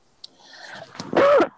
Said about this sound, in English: But yeah, it's in your throat. Sorry. So I didn't mean to cough directly into the microphone. So it seems like you leaned in to do that. I'm used to coughing. Went for it. I'm used to coughing into my right arm, and that's what I instinctively did.